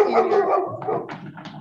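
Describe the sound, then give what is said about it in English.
A dog vocalizes in a short burst of harmonic barks and whiny yips, lasting under two seconds with no talking. “Your dog also has the answer.”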